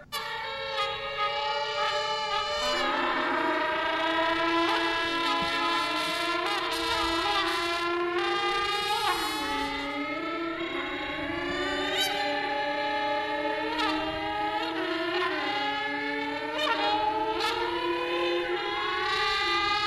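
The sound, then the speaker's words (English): A trumpet mimics a Formula One engine, its bright, buzzing tone sweeping up and down in rapid pitch climbs like gear changes, loud and continuous with no talking. “They made a video about playing the trumpet and making the trumpet sound like a Formula One engine”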